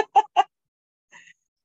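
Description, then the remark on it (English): A female cockatiel lets out three harsh, rapid squawks, then after a short pause gives one fainter, thinner chirp. No one is talking. “It is not a parakeet, it's a cockatiel, and she likes to talk too.”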